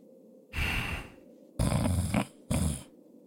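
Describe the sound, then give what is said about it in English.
Three rough, rumbling snores in close succession: a long drawn-out one, then a second, then a shorter final snort. They are loud, with no talking. “And you hear nothing. Just snoring and mumbling, maybe, of your friends.”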